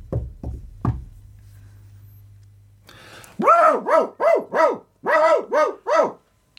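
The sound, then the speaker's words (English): Three quick, sharp knocks on a door, followed by a brief pause with a low hum, then a dog barking loudly, about seven barks in a steady rhythm. “Just fucking knock on the door.”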